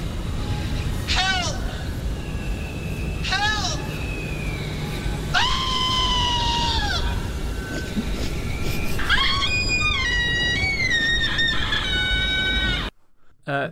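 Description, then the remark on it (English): Tense horror film score from the film Colour Out of Space: a steady harsh rumble beneath repeated high, wavering screams in short bursts, swelling into a denser cluster of shrieks before cutting off abruptly. “Is the music The Woman in Black? It sounds like the train station scene, but...”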